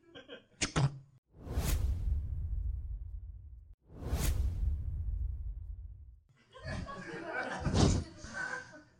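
A door swings shut with a heavy whoosh of air and low thud, happening twice in a row, followed by a burst of rustling, muffled noise.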